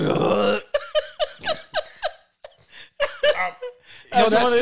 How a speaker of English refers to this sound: This bitch out here farting. This bitch out here in Queen, she farting.